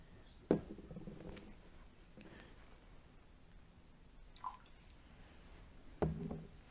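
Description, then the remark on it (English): A small amount of water trickles into wine in a chalice, heard as faint, brief liquid splashes and a soft clink or two, with no one speaking. “Through the mingling of this water and this wine, may we come to share in the divinity of Jesus, who became a human being to share in our humanity.”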